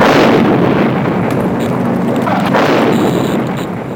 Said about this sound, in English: Who on earth survived yet another bomb explosion in this series? What made the bomb so hot that Paris Hilton dropped it?